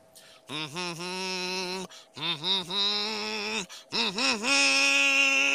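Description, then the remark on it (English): A person hums a short tune to welcome someone back in, in three sustained phrases, each opening with wavering, bending notes that settle into a steady pitch, separated by brief pauses. The humming is fairly loud and rich in overtones. “Because you were back, I'm going to hum you in.”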